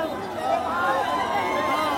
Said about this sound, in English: Wow, the crowd is just going mad. The crowd is absolutely loving it. Everybody is mesmerized. Everybody is absolutely overjoyed.